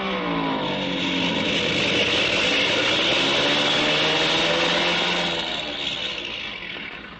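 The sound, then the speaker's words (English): A loud, steady airplane engine roars as the plane comes in fast with its engine acting up, its droning pitch slowly bending and shifting before easing off slightly at the end, with no voices. “Well, we'll know in a minute because he's coming in fast.”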